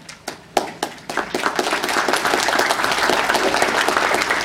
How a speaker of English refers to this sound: Round of applause.